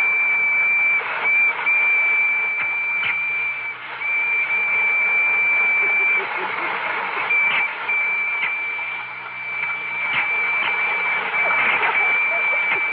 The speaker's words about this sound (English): …, are the electric trains ready? Oh, I think they're all lined up. Well, start one up and let's see.